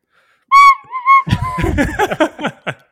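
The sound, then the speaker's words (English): A tin whistle blown through the nose gives a short, loud, reedy two-note toot, quickly followed by breathy snorting and laughter-like sounds. “Just two whistles out of your nose.”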